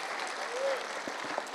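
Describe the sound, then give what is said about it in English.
An audience claps in praise of God, a dense, steady wash of applause that holds at an even level for the whole moment, with a brief high whistle-like tone rising through it. “Can we give God a clap of praise?”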